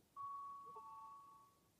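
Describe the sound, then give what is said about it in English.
A small shop door bell chimes once, a bright sustained ring with a second note joining partway through, fading slowly. It sounds fairly faint, with no talking. “That little bell.”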